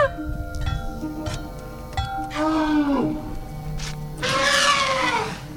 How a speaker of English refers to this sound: This clanging and thumping and trumpeting is performed by …. The pachyderms have been trained to create their own music using tools confiscated from illegal loggers.